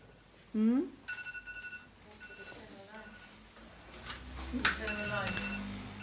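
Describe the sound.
A medication reminder alarm beeps in steady high-pitched tones at moderate volume while a voice talks over it intermittently.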